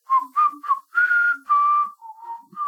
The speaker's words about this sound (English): Well, I've looked through all the downstairs rooms, so I think I'm heading upstairs. But I'm just keeping that melody going, whistling.